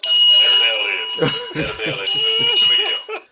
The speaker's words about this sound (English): There you are with that damn bell. Time.